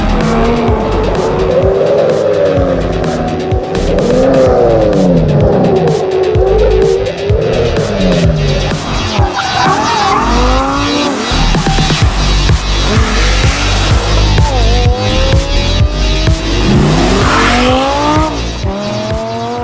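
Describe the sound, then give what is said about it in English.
A high-performance Lamborghini sports car engine revs loudly and continuously, its pitch sweeping up and down through gear changes, with tires squealing and skidding throughout. “The sound we generate with our engine is so special, so different.”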